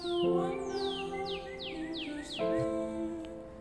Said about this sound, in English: In the end, the birds are singing.